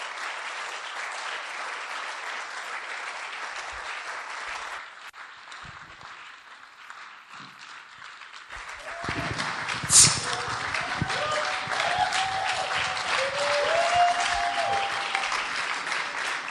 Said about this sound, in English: Why don't you put your hands together to welcome Bishop? तालियां बजाएंगे और बिशप को इनवाइट करेंगे. जोर से तालियां बजाएंगे. Oh, clap, clap for Jesus.